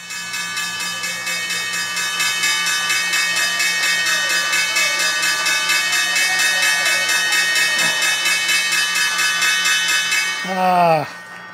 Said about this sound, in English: Pause for the bell.